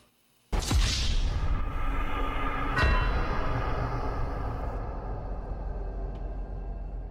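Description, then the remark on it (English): A fighter jet crash in the video game GTA: a sudden loud boom bursts in after a moment of silence, followed by a heavy, sustained rumbling roar, with a second sharp impact partway through. “And that's what it sounds like every time on GTA when I crash a fighter jet.”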